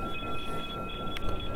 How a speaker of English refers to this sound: Here goes the train. I remember I'm doing a broadcast. I have to have the window open because it's horribly humid and I don't have a cooler, just a fan.